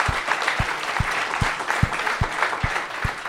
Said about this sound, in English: But I'd just like a quick round of applause, Mr. Kevin Campbell.